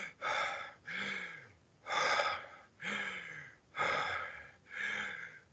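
Heavy, deep breathing: about three quick in-and-out cycles of loud, breathy gasps in a steady rhythm, with no talking.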